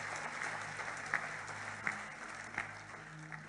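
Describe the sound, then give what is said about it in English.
An audience claps steadily in a dense, even patter of many hands, with a few sharper, louder claps standing out now and then. No one speaks over it. “Don't be afraid to clap.”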